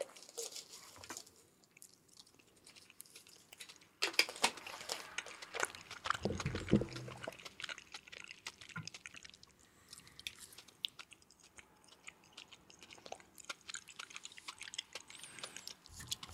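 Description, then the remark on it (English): Wet chewing of gummy candies, with sticky smacks and soft clicks repeating steadily for several seconds and a brief louder burst partway through. No one speaks. “It's going to take 1 second and chew some gummies.”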